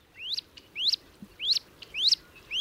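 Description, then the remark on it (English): Wood duck ducklings, a dozen following a female swimming across a pond, give high, rising peeps, about five clear calls at a steady, evenly spaced rhythm, distinct over a faint low background hum, with no voices. “As a female wood duck swims across a pond with a dozen little ducklings in tow, we see her as a good mother looking after her brood.”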